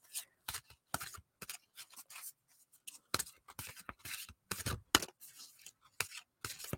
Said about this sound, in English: I haven't shuffled these cards yet. They're brand new. I've opened them. I've cleansed them. I have not shuffled them yet.